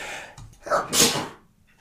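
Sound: sneeze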